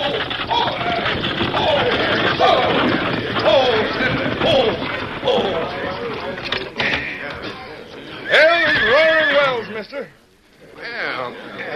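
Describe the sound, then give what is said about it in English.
A stagecoach with horses pulls in at Roaring Wells amid a busy clatter of wheels and hooves, with voices calling out over it and a sharp burst near the end before things quiet down. “And then, on the incoming stage of Roaring Wells, nearly 2,000 miles to the westward...”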